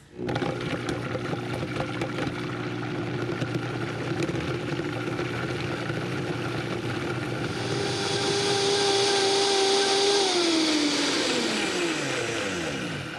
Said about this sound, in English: Okay, the Vitamix is really strong. I'm gonna put it on. I'm gonna put it on a little bit at a time, and then I'm gonna kick the horses in, so hold on.